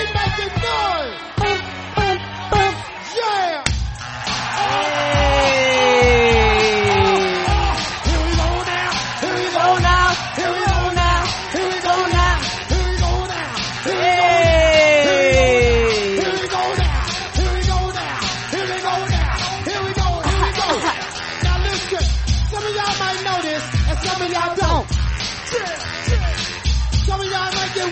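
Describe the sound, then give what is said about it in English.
A crowd yells and cheers steadily over a loud, driving beat with pounding drums, while swooping horn-like blasts slide downward in pitch a few times. “Three, I want everybody in the place to be to make some noise if you're down with me.”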